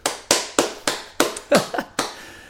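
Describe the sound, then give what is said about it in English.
A brief burst of hand clapping, about eight sharp, bright claps at a slightly uneven, steady pace, each with a quick decay, and no voices. “No clapping allowed.”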